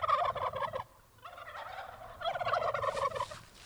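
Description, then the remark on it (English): Heritage turkeys gobble in rapid, warbling bursts on a family farm in Massachusetts, several overlapping calls rising and falling in a few loud waves with short pauses between, with no voices present. “Behind her mustard-colored farmhouse, small fields bordered by stone walls are dotted with sheep and turkeys. But these are no ordinary turkeys.”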